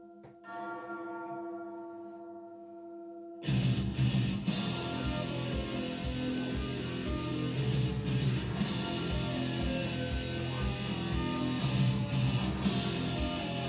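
A resonant church-style bell rings out alone for a few seconds, then a loud, distorted heavy metal band crashes in and keeps playing with pounding drums and thick guitars.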